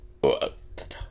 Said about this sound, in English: A bodily noise or exclamation. Burp. It's perfect timing.